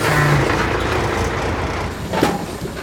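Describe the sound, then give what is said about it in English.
A truck engine rumbles steadily, a deep continuous drone with a brief rise near the end as the vehicle pulls up at a truck stop. No one speaks. “Well, this is as far as I go, Ethel. Thanks so much, Lumpy Wanda. This here truck stop will have plenty of folks going in all different directions.”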